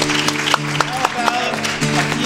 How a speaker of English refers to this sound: Applause for our cast and crew.